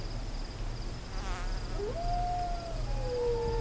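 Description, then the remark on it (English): A long, rising howl swells and holds, then a second howl overlaps and slowly falls, coyotes calling in the desert over a steady, high insect drone. “The coyotes. Maybe they can help us find her.”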